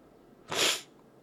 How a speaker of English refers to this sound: Yeah, there's going to be some sniffing. I know that's not good audio. I can't breathe out of my nose.